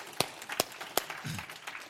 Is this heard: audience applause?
yes